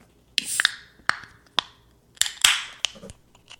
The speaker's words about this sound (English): I'm going to open up my second beer. Uh oh. Because we're 45 minutes into the show, and I got to make sure I open this before the show ends. So this is my Barrio Rojo Scottish Style Amber Ale.